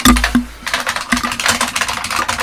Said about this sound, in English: People, this is not Foley work. This is actually how loud his keyboard is. Yeah, I got a mechanical keyboard. It's the Unicomp reproduction, though I do have some original Model M's.